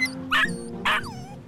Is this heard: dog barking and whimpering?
yes